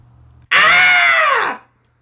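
A single loud, sustained human cathartic scream, done for the Daily Cathartic Scream show, bursts out abruptly, holding strong for about a second with a slightly falling pitch before cutting off into near silence.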